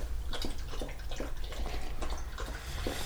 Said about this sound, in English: I think the louder you drink it, the better it is.